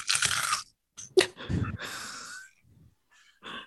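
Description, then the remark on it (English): A series of loud crunching bursts, made by a person as foley, gritty and uneven, like something being crushed underfoot, separated by brief pauses and ending with a softer crunch. “Was that in-game crunch?”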